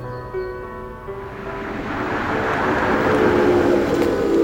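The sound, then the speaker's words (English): A car pulls up, its engine rumble and tire noise swelling steadily louder as it approaches over a few seconds, with no voices. “It appears our car has arrived.”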